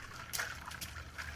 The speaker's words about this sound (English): Now he just punched water. Yeah. He just punched ice in water.